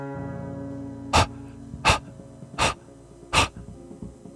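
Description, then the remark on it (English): A beagle puppy's wet, huffing pants, four breathy bursts in an even rhythm, clear above a steady low droning background, with no voices. “A wet, rapid breathing. Waiting for me at the door to City Hall.”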